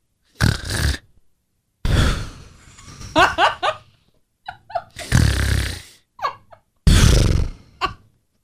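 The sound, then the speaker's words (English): A voice imitates a husband's snoring: four loud, rasping snore bursts with pauses between, broken by short, choppy grunting and chuckling sounds in the middle. “And he said, well, was I snoring? And I said, yeah. And he said, was it bad? And I said, well, this is what it sounded like, honey.”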